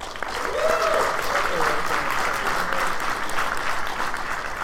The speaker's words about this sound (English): One more time by a show of applause. How many people think Super Mario 3D World is an improvement over 3D Land?